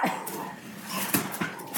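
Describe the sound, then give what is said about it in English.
A dog lets out a few short, sharp barks and yips in quick succession at the mailman putting mail through the slot, slightly muffled, with no one talking. “My dog was literally attacking the mailman.”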